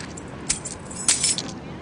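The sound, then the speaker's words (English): Thrown keys jangle briefly in the air, then clatter as they land, a couple of bright metallic clinks and rattles over a low background rumble. “You're going to have to catch the keys.”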